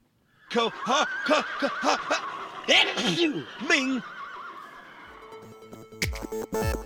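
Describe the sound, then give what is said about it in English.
A horse whinnies loudly, a long quavering neigh with rapid pulsing bursts that rises and falls over several seconds, followed by a brief rustling clatter at the end. “Let's go then, before the horses go crazy.”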